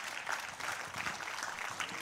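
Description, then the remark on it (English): An audience applauding: steady, dense clapping from many hands, a continuous bright crackle that holds at an even level throughout without voices. “And whatever's going on in your life, go ahead and applaud.”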